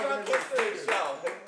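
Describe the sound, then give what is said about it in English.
An audience claps in a brief, uneven burst of overlapping hand claps, with a voice talking over the applause throughout, clapping to get an audience member to come up. “Otherwise, yes, clap.”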